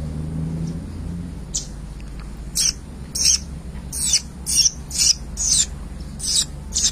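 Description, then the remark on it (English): Birds sing in a quick series of bright, high chirps, about ten bursts repeating rhythmically, clear over a low, steady rumble in the background. “May you think the birds that are singing those songs for you.”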